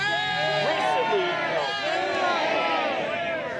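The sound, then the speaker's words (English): A boisterous street protest crowd, many voices shouting and calling over one another in a steady, loud din with rising and falling cries, no single speaker standing out, sending a message up the street to Queen's Park. “The boisterous crowd was sending a message up the street to Queen's Park, where the Ford government says it plans to appeal a court ruling that Bill 124, which limits most public sector pay hikes to 1%, is unconstitutional.”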